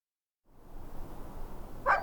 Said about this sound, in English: The dogs greeted me at the gate, tails wagging like crazy, yodeling the way they do when they're ecstatic to see me.